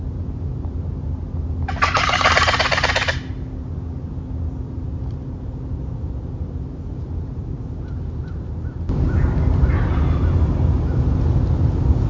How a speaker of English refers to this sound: It's just a quick little clip of me gobbling on my box call, and then you're going to hear a crow, and then you're going to hear two fall gobbles. So here's that little clip while they're on the roost.